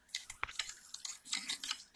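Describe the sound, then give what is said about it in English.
Quiet squelching and scraping as a utensil mashes zest and parsley into soft butter, with irregular clicks and smears repeating over a couple of seconds and no voices. “Mixing it in.”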